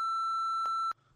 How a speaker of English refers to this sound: I'm gonna say this real quick and I'm just gonna beep it out, right?